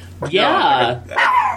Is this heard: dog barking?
yes